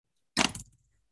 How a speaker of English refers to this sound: Should we roll the dice? Roll the dice again.